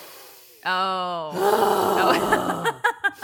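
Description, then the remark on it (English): A voice imitates a loud breathing exercise, inhaling the positive and exhaling the bad: a drawn-out groaning tone, then a long, rough, growling exhale, ending in a few short puffs of breath. “Inhale and the positive, like, exhale the bad. Is there a demon coming out?”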